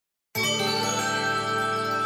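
A bright little chime rings out after a brief silence, its clear shimmering tones sustaining and slowly fading, with no voices over it.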